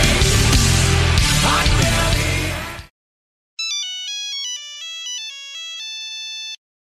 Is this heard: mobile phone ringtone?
yes